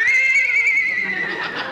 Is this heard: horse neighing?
yes